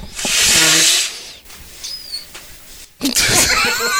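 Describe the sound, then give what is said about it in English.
A loud, breathy nasal blast followed by a brief, thin, high-pitched little squeak caused by pressure on a person's nose, then another hissing burst of air with wavering whistle-like tones. No one speaks. “The pressure on my nose. The weird little squeak.”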